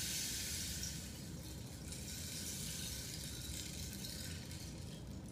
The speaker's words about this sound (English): It's like, it's got beads in it or something. And she rolls it. Yeah. The rain stick. Yeah, that was really cool. Rain stick. Yeah. It's called a rain stick. Yeah. It's good because it kind of settles the body after you've had a treatment.